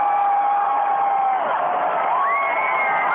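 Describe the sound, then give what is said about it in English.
A large stadium crowd with Lions fans at a football game at Jerry World cheers in a steady, dense roar as the teams line up for the kick, with long held shouts and whoops riding on top and a higher yell rising in the last second. “They're lining up for the kick. They're Lions fans in front of us.”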